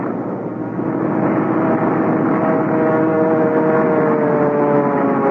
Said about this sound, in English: I remember the plane landing and then shearing sideways before I had time to cut the engine. I could feel the water nose split and was fighting desperately to keep my control. I remember slithering sideways straight for the control tower